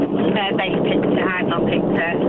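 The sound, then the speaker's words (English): Loud, steady rushing wind noise roars across a narrow phone-line sound without letup, and a voice talks through it, partly buried by the blustery hiss. The caller is driving home from work. “OK, you sound like you're on the actual wing of the plane. I'm driving home from work.”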